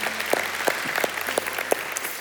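A church crowd applauds steadily, a dense wash of many hands clapping at a fairly even level for a couple of seconds, with no one speaking over it.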